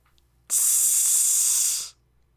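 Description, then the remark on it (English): A single sustained hiss, bright and sharp, starting abruptly and holding steady for about a second and a half before cutting off. No voices. “Hiss.”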